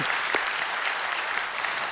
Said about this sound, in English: See, yeah, if you want to clap, go for it. Amen.